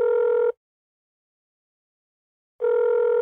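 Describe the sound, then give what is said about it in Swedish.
A telephone ringing tone heard while calling: a steady, buzzy tone cuts off after half a second, then a gap of silence, and the tone starts again about two seconds later, clear. “Men jag tycker vi ringer han.”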